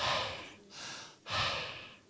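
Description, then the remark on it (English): A person takes exaggerated, audible breaths, three airy whooshes of inhaling and exhaling in quick succession, with no talking. “You see how you breathe?”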